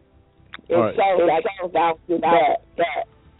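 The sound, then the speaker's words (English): A thin, telephone-quality voice of a caller on a cell phone talks in choppy bursts, cutting out abruptly between short fragments so the speech keeps breaking up, fairly loud. “Okay, she's fading in and out here.”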